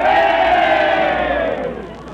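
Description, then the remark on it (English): A large crowd at a football game roars with cheers and shouts, the Meatball team's cheering section, loud and sustained, a dense wall of voices that gradually fades a little toward the end. “And now, the Meatball cheering section.”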